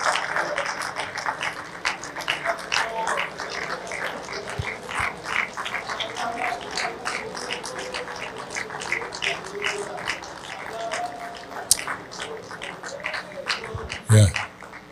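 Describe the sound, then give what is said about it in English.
An audience claps in an uneven, somewhat hesitant way, with scattered hand claps continuing throughout and voices murmuring underneath, ending in a brief louder burst. “You're funny the way you clap. You're like, I don't know if I should clap or not.”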